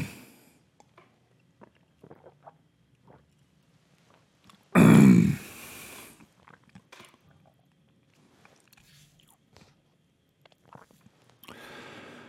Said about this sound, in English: Oh, I need a little sip.